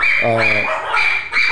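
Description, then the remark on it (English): Three Pomeranian dogs yap and bark in a quick, shrill burst, fairly loud, with more high-pitched barking continuing through the rest of the moment. “Sorry, this is what happens when you have Pomeranians. When you have three Pomeranians.”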